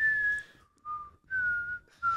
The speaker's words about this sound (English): Oh, the whistling like, in the background? No, you got to hear it. It's like every time you get it to like something good, it's like... There's a sound.